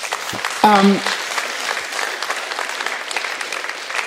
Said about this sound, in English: Clap.